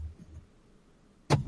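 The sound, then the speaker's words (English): A faint low car engine rumble fades out, followed after a quiet pause by a sudden, sharp clunk of a car door opening near the end. No one speaks. “I was in the car, though. Did you hear the door opening?”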